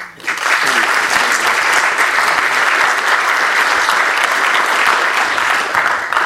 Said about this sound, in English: I think, first of all, we just let's applaud once more the film and the people in it.